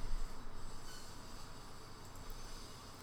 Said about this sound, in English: I had to stop again because of construction next door. You probably heard a bit of it. There it's starting again.